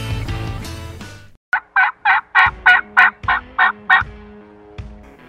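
A turkey gobble: a loud, rapid rattling burst of about ten throaty pulses in quick succession, heard alone after a short stretch of rough noise.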